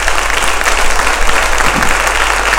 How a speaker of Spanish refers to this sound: Si le vas a dar un aplauso al Señor, dáselo fuerte.